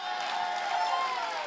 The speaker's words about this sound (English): Let's clap as the band takes a little bit of a break before we record tonight. Come on, clap for these guys.